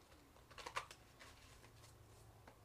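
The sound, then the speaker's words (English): Tarot cards being shuffled, a quick cluster of soft papery flicks and taps that peaks early, then lighter scattered riffling over a low background hum, with no one talking. “All right, so I'm just going to shuffle it really quick.”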